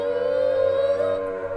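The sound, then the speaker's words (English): A siren wails steadily at a mid pitch, holding one loud, sustained tone that drifts slightly upward partway through, with no voices over it. “I think we hear some sirens. Man, so many sirens.”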